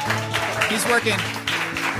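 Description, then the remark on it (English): Audience applause for the guitarist and singer at a live holiday family show at Transistor in Chicago, a steady wash of many hands clapping at moderate loudness, mixed with a voice and sustained low tones running underneath the whole time. “Let's give him a big round of applause there.”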